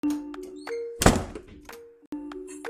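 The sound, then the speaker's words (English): A closet door swings shut by itself and locks, with a single heavy thunk followed by a brief rattling decay, while steady tonal background music plays throughout and cuts out briefly near the end. “Did the door to the closet just close by itself?”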